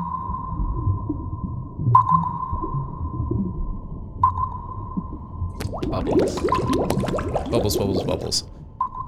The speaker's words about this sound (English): Bubbles.